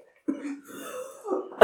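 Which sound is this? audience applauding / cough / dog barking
cough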